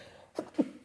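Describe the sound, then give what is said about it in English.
A quick, stifled sneeze while handling dusty books: two short, soft bursts of breath in quick succession, the second a little stronger, with no talking around them. “I'm gonna sneeze. These books are quite dusty.”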